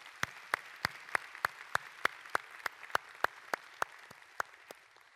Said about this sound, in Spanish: ¿No le da un aplauso a ese Dios tan enorme?